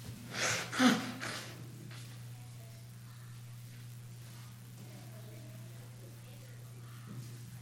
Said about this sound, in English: Let me blow my nose.